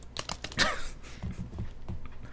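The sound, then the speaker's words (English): Rapid clattering keystrokes on a computer keyboard, fairly loud, in an irregular burst of clicks and taps with no one speaking. “Stop typing so loud.”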